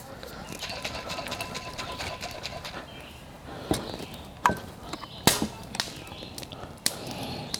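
A coffee maker hisses steadily as hot water builds pressure, with sharp pops and sputters breaking through now and then near the end, moderately loud.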